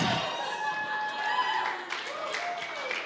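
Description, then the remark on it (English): An audience gives a brief, polite round of applause, a steady moderate patter of clapping lasting about three seconds over a faint sustained tonal hum. “Thank you for the courtesy clap.”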